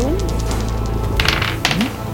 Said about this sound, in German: Würfel. Ich glaube, ein D10 ist es. Um den Schaden zu minimieren.